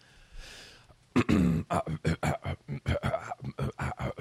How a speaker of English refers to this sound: Why am I coughing?